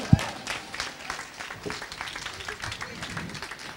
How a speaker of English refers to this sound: Definitely a big round of applause for Sonia.